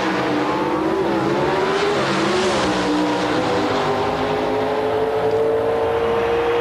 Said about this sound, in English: Lots of RPM building in these engines as the two drivers get ready to leave.